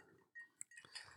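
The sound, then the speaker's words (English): Two or three quick, bright glass clinks ring out faintly, like glasses touched together in a toast, over quiet, muffled background noise. “That's cheers. That's right. Good ding, ding, ding.”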